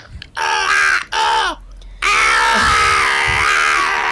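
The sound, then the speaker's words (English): A man imitates a friend squawking real loud, giving two short raspy cries followed by one long, sustained screeching call with a strained, bird-like rasp. “I kind of turn to … and I nod, and then he just starts squawking real loud.”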